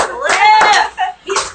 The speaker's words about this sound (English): Let's clap it up for our boy